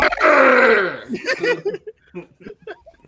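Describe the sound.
A person lets out a long, rough, loud growl that slides downward in pitch over about a second, then trails off into a few short grunting, muttered vocal bursts.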